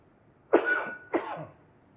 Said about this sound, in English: You have to pardon me for a cough here for just a minute.